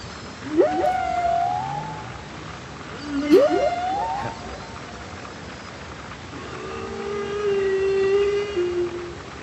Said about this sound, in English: Is that a humpback? Yeah, that is a humpback whale. Very, very impressed. It's the classic whale song from 90s meditation tapes.